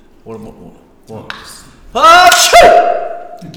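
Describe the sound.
A sneeze, blamed on the air conditioning: two short, breathy voiced catches build up before a loud, noisy, hissing burst that trails off with a voiced tail.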